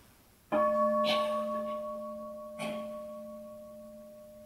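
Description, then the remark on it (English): A meditation bell is struck once, then lightly struck again about two seconds later, its clear sustained tone ringing steadily and slowly fading away. “And we listen to the sound of a bell.”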